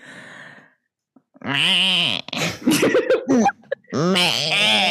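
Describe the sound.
A person imitates a goat or sheep bleat with loud, quavering 'baa' calls, a couple of drawn-out wavering bleats separated by short breathy sounds.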